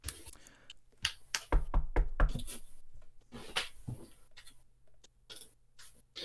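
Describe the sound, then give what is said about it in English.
A door being opened: a series of sharp clunks and rattles, with a heavier burst of thuds in the middle, then a few scattered taps as it settles. No one speaks. “The door opens.”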